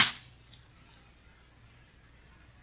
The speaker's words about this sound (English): You slapped Jacoby. Okay, baby. Nobody slapped Jacoby. Not you, not the cops, not anybody.